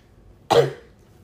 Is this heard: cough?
yes